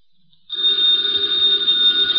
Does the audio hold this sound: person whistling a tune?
no